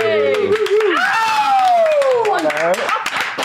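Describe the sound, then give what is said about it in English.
Rapid hand clapping in a steady, quick rhythm, running under a loud sung or chanted voice that swoops up and down in pitch. “Did you make the sound? I had to. I was clapping.”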